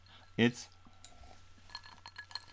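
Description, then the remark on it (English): A single bright clink of two glasses of margarita, each with an ice cube and no salt on the rims, touching in a toast, fairly loud near the start, followed by quiet with faint shuffling and soft background murmur. “We're going to pour that into 2 lovely glasses, which each have an ice cube in it.”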